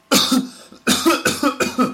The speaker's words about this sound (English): A cough. A cough. I've got a cough, and that means you're doing this a lot.